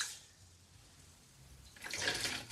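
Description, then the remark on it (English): Water sloshes and swishes, softly at first and then louder and more splashy toward the end, as rice is mixed and rinsed with the fingers in a bowl of water to wash off the starch. No voices. “And generally speaking, you can wash it, you know, a few times in the bowl and that should do the trick.”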